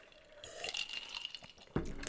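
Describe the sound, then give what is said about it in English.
A quiet slurping sip of a whiskey-based Greedo drink, a soft wet liquid sound lasting about a second, followed by a sharper clink as a glass is set down. No one speaks. “Oh, I'm going to try and take another third, sip.”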